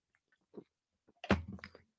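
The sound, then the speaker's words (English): A quiet sip of zero sugar Dr Pepper: a couple of faint mouth clicks, then a brief slurp and gulp, with no one talking. “Here, I'll take a sip every time I say Hard Times.”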